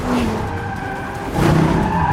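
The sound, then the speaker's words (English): Car tires skid and squeal loudly over a roaring engine, a sustained screech that swells louder halfway through, as a car slides hard during a car chase scene in an action movie. “So it's car chase, car chase.”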